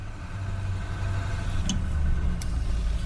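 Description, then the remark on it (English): A school bus engine idles with a steady, deep rumble that holds even throughout, broken only by a couple of brief metallic ticks partway through. “and meanwhile, Nandu's school bus came that way.”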